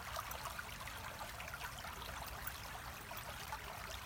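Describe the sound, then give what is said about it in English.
Soft, continuous wash of sea waves, a steady hiss and rumble of water without distinct breaks or crashes, heard alone with no voices. “And the sound of the blue sea.”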